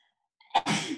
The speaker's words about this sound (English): When we were at Stump Pass, I got a sneeze.